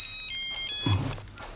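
A mobile phone ringtone plays a bright, high electronic melody in short repeated pulses, loud, then cuts off as a low rumble and faint noise follow.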